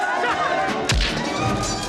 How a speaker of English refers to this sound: Yeah. I love those punch sounds. But it's also the way that he throws the punches.